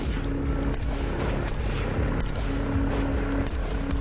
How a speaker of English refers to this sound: But as they were boarding a plane, another truck pulled up and several gunmen jumped out and opened fire on them.